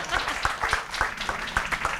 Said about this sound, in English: Where's the applause? I thought people... I know.